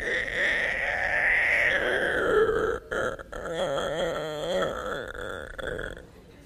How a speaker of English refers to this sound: It starts like this. The thing starts, when it first comes on, you hear this door squeaking.